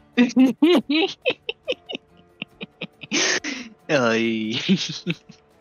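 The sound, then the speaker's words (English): A person, fairly loud, makes a few short choppy vocal sounds, then imitates a wolf howl with one sustained, wavering cry that bends upward before breaking off. “I want to roll it with and try to make a wolf sound to scare the shit out of the owl.”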